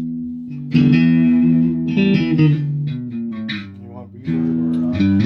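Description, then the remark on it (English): A loud, distorted electric guitar roars through an amplifier, playing sustained chords in several bursts with brief dips between them, gritty. “Does that have more distortion, that one?”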